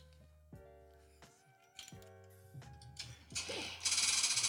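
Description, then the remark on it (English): An L-saw light machine gun firing: a handful of sharp, irregularly spaced metallic cracks over a steady tonal hum, building to a dense, loud burst of continuous rattling noise at the end. “No, dude, that's an L-saw.”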